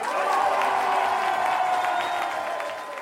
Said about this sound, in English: Ladies and gentlemen, finally put your hands together for the great ….